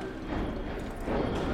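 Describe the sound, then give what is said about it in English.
Horse hooves clip-clop steadily along a street in Boston's North End, a busy, crowded waterfront district of commercial and residential blocks, amid a dense wash of city ambience with laborers, residents and commuters, and faint, indistinct voices murmuring in the background. “Laborers, residents, commuters, horses, they're all just going about their business.”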